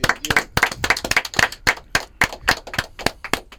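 A small group claps briskly, sharp hand claps tumbling in quick irregular bursts with no voices, the clapping steady and fairly loud throughout.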